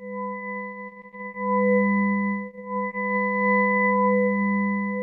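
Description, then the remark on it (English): A steady electronic drone of sustained tones, a strong low hum with fainter higher harmonics, swelling and dipping in loudness with brief wavering ripples, sonified from NASA Messenger spacecraft measurements of waves the solar wind creates in Mercury's magnetic field, with no talking. “This sound has been created from measurements taken by NASA's Messenger spacecraft. Here, the solar wind creates waves in Mercury's magnetic field, like wind blowing over the ocean.”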